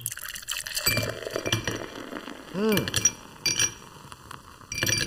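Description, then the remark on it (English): Glasses of ice-cold beer clink several times, with liquid sloshing and pouring sounds in between and a brief voiced sound midway, as drinks are raised and sipped. “Oh my God, that is a good ice cold beer.”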